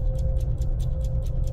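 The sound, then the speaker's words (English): A clock ticks in a quick, steady rhythm, about five crisp ticks per second, over a constant low hum and rumbling drone. No one speaks. “Imagine, if you will, the world ticking by, second by second by second.”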